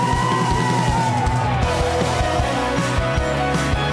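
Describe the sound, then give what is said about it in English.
A loud street crowd of Chiang Rai residents cheers and yells continuously as ambulances pass carrying the last of the rescued boys and their coach to hospital, with a wailing siren tone sliding downward through the noise for the first couple of seconds. “The streets filled with joy as the residents of Chiang Rai came out to cheer the ambulances, bringing the last of the boys and their coach to hospital.”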